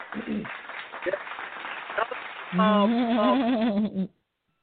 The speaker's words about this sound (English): Let's throw that claps back on it for you.